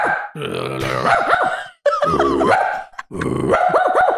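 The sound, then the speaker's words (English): A person's voice imitates a small dog barking, three loud, yappy bursts separated by brief pauses, each with a growly, strained quality. “I do this talent where I bark.”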